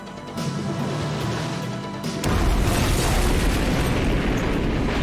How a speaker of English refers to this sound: And then immediately after, an entire gas station blows up in slow motion. Yeah. It is beautiful.